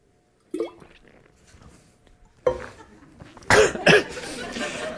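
A person sips water, then coughs twice, loud, with wet swallowing and faint clinking sounds between, and no talking.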